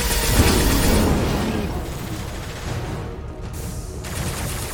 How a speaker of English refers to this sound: Oh my gosh, I hear shooting.